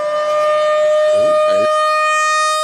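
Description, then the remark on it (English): A loud, steady siren wails on one sustained pitch throughout, with a brief murmur of voices faintly underneath partway through. “Well, to be fair, I don't think that interrupted me because I think the sirens interrupted it.”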